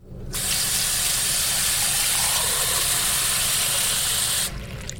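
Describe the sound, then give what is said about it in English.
Water runs in a steady, loud rushing stream for about four seconds, as if poured into a big glass from a tap, then cuts off abruptly. No voices are heard. “Mmm, a big glass of water.”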